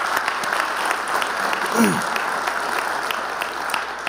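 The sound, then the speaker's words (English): Steady applause from a church audience giving moms a hand, dense crackling claps sustained throughout at an even, fairly loud level, with a brief low voice-like sweep partway through. “Let's give moms a hand.”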